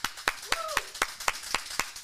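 Steady, evenly spaced hand claps, about nine in two seconds, crisp, like a single person applauding, with a brief whistled or whooped note early on.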